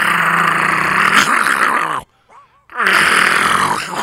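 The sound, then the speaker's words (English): A person imitates the growl of a little chihuahua in a stroller at someone looking into the stroller: a harsh, rasping snarl, loud, breaking off briefly with a quiet hum before the rough growling resumes. “You know, and it's like a little chihuahua growling at somebody as they go to look into the stroller.”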